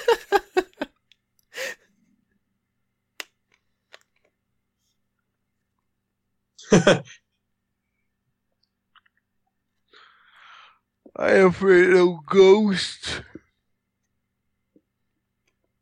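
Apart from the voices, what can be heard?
person yawning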